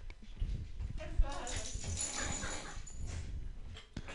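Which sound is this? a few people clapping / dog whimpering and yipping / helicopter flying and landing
dog whimpering and yipping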